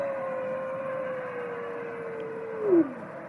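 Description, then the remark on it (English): An animal howls in one long, sustained, steady note that drifts slowly lower, then swells briefly and slides downward at the end. No one speaks over it. “Man, his howl is so peaceful.”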